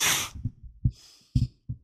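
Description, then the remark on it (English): A dog with sleep apnea snoring: a breathy hiss, then several short, rumbling snorts at uneven intervals, fairly quiet overall with no one talking. “That's my dog snoring.”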